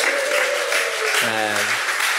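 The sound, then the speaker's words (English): Steady applause from a crowd for this year's small group leaders as they stand up, a dense even wash of clapping filling the whole clip, with a voice briefly calling out over it partway through. “Yay, give them a clap.”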